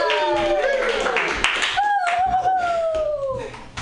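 Dense audience applause for a comedian at the Joke Workshop comedy show, with steady, overlapping hand claps throughout, topped by a few long, sliding high-pitched whoops and cheers that rise and fall over the clapping.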